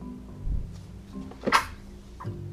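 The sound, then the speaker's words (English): A single sharp sneeze bursts out about midway through, brief and fairly loud, over a low steady hum with a couple of soft thumps around it and no talking. “Bless you.”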